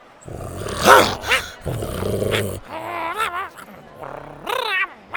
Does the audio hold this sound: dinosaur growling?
yes